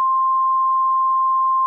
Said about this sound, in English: He did that description live. We had to beep it.